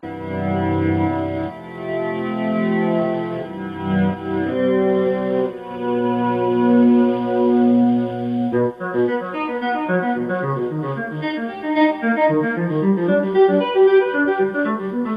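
An electric guitar plays a solo with soft volume swells, each note fading in without a pick attack, layered with echo and chorus into a shimmering, organ-like wash; the notes quicken into a rippling run.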